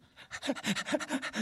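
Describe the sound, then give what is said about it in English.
A person imitates their dog panting excitedly on a walk, with quick, rhythmic breathy huffs repeating steadily for about a second and a half. “And I have a relationship with my dog, right? You know, when he comes, hey, want to walk? While we walk, he go crazy.”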